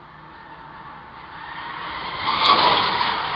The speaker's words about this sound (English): Here's the clip of Anne Heche's car zooming by at a rapid, probably 80 miles an hour through a residential neighborhood.